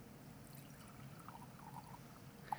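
A quiet, steady pour of wine into a vessel, a soft continuous trickle lasting a couple of seconds with a faint clink near the end, heard alone without any talking.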